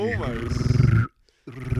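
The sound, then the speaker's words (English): A voice imitates a laser-beam machine gun: a wavering tone sliding down, then a rapid string of gravelly, growl-like pulses, a brief silence, and another short burst. “Could you do like a laser beam machine gun?”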